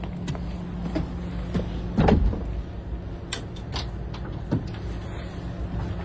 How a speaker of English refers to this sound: The senior citizens field trip bus.